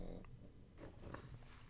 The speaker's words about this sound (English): I apologize for the snoring that you hear in the background. One of my dogs is being extremely needy, and she needs to be curled up right next to me. So I apologize if you hear the snoring. It's my pug, one of my two pugs, making her presence known.